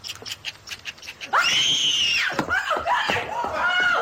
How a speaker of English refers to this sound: She is immediately horrified by Aiden's pet squirrel, where we get the first Carrie shriek in the episode